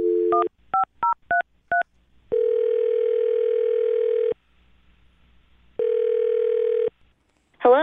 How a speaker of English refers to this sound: And okay, well, I'm going to dial her phone number right now, see if we can get her on the phone and find out why, okay?